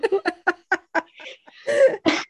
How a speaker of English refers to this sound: Excuse me. God bless you.